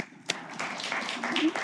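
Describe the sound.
A brief burst of audience applause, a dense wash of many hands clapping at a steady, moderate level, with a sharp single clap at the start and faint voices mixed in.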